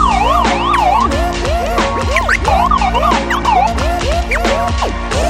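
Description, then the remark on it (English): Several emergency vehicle sirens wail at once, their rising and falling tones overlapping loudly and continuously over a low rumble of traffic, with no voices. “You hear the sirens?”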